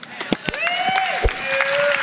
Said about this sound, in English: That's okay, that was a slow clap. I'll take it. That was 8 people that started, y'all. Better than the 9 o'clock service. We have 5 people clap, everybody else still quiet.